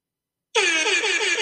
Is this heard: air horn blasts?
yes